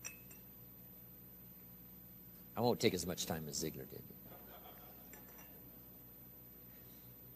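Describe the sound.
A drinking glass clinks and rattles for about a second as it is handled, fairly loud, while a man speaks.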